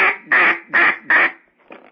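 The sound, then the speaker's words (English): A duck call blown in a quick series of four loud, raspy quacks, evenly spaced, followed by a fainter, softer quack trailing off at the end. “You want to do the quack like a duck.”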